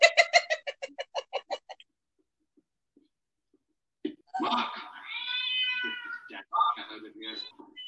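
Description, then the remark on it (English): A cat meows loudly in long, drawn-out wails after a short quiet pause, preceded by a quick run of rhythmic, clucking-like pulses. “So the cat is not a part of the show.”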